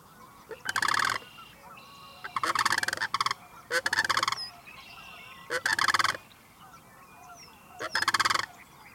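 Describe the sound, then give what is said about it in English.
Sandhill cranes giving their rattling call: five loud, wooden, rolling bursts, each under a second, separated by short gaps, with faint bird chirps in the quiet between them. “You would just hear that really distinct kind of wooden sounding a call that they have.”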